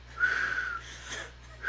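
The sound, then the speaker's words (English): A person whistles one steady, held note for about half a second, followed by softer, breathier whistle attempts; fairly quiet, with no talking. “And his whistles are getting less and less complex as time goes on, until the point where he's doing just one whistle.”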